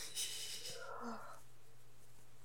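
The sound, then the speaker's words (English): A woman's single soft yawn: a breathy inhale rising into a drawn-out, voiced groan that fades away after about a second, with no talking around it. “If she's done yawning.”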